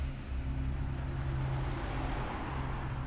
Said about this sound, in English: It had gotten darker outside, but there was still light, so the killer tried to act as casually as they could as they locked the front door behind them, then got into their car and drove out of the neighborhood.